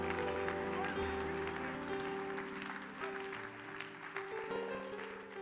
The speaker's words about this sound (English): Let's clap our hands to the Lord one more time and give him a great praise.